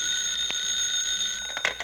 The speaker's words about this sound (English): Oh, Mary, will you answer the phone, please?